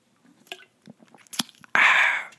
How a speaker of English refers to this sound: Let me just have a sip of this energy drink.